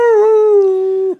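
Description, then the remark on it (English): A voice imitates a beagle's howl: one loud, steady, drawn-out note held for about a second at an even pitch, then cut off abruptly, with no talking. “Because beagles are a vocal animal. Of course they are. Beagles bark.”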